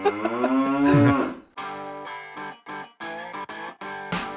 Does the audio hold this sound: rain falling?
no